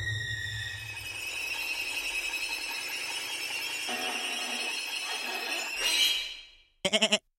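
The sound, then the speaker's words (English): A goat lets out one long, loud, strained bleat, held for about six seconds before cutting off, followed by a quick burst of short pulsing cries. No one speaks. “Oh no, Darius! You've manifested your soul into a goat!”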